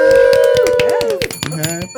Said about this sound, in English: This bell. Right. I know. That bell gets your attention.